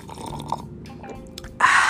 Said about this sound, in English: Hold on, y'all. Let me sip some of this coconut water. Remember, I used to sip on the tea, but now since I'm healing this stuff, I got to sip on some coconut water. Hold on, not too much, just a touch.